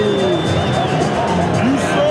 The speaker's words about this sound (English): Oh, the snow is coming down as well. The snow is coming down. The Eagles are getting booed off big time.